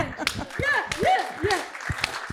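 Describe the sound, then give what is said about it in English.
A slow clap: about half a dozen sharp, separate hand claps at an unhurried, fairly even pace, with swooping high-pitched vocal or whistle-like tones sounding between them. “And slow clap opinion.”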